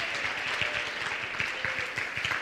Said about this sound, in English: Stand to your feet and clap your hands all over the building. Come on, let's thank God.